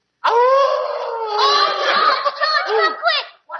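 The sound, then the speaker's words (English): A man's voice imitates a dog howling, one long sustained wavering howl with rising and falling pitch, bright harmonics, and a few yelping breaks near the end, loud and continuous for about three seconds. “you make a noise like a dog. Lay your ears back and howl.”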